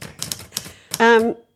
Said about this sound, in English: I'm waiting for a response from the typewriter.